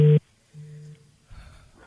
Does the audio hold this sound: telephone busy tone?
yes